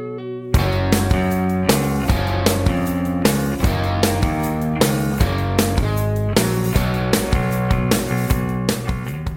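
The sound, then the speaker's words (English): A loud rock band kicks in after a brief pause for the verse progression, steady drums driving a heavy bass line and distorted main guitar chords panned off right, in a tight, repeating rhythm, with no vocals. “the drums and bass come in for 6 more measures, along with that same guitar that's panned off right, the main guitar there.”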